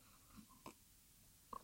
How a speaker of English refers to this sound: excuse me, I have to take a sip of water.